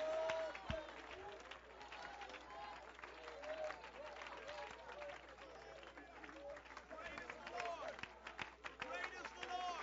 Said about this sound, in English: Oh, clap your hands, all your people, and shout.